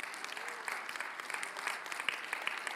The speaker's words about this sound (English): Oh, nice clap.